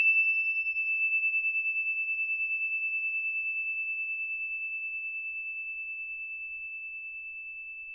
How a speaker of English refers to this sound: And when you hear the ding, put your hands up. And when you don't hear the bell anymore, put your hands down. Here comes the bell. It's the story bell.